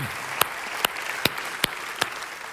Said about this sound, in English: And can we just give a round of applause for the people that have partnered?